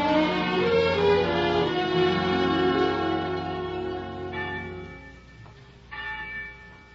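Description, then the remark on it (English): Church bells clang and peal together in a rich, ringing wash of overlapping tones, with new strikes layered over lingering hum, fairly loud and sustained with no voices, ringing out news of a great victory. “But every day you read the papers and heard the gossip of the village, and every day the winds carried you the clangoring of the church bells, telling the news of some great victory.”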